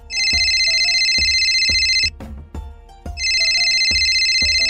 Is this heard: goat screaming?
no